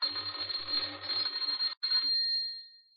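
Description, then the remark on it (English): An electric doorbell at a house in Oxford, pressed by a man, rings in a bright, buzzing burst with a pulsing low hum, stops briefly, then sounds again as he tries once more, and slowly fades away. No voices. “He had a worried expression on his face as he walked up the few steps and pressed the doorbell.”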